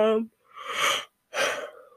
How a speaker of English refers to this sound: I keep yawning because I just took my other meds.